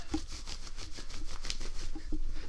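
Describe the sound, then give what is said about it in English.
A person imitates a dog panting: a fast, steady series of breathy, hissing huffs, about a dozen in quick rhythm, with no talking alongside. “How do you think pants sound? Pants like this. Here, let me give you a... Here's panting.”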